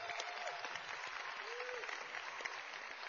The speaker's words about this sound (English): And just, we should applaud her success. It's just amazing.